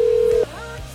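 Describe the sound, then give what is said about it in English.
A single steady, mid-pitched telephone dialing tone from the Ollie's Bar and Grill soundstage phone system sounds clearly for about half a second, then cuts off abruptly, leaving only a low background hum and faint noise. “let's get the Ollie's Bar and Grill soundstage phone system cranking”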